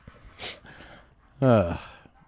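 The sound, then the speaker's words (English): Heavy breathing: a short breathy exhale, then a loud, strained gasp with a voiced, groaning edge that trails off. “He's breathing real heavy in that position.”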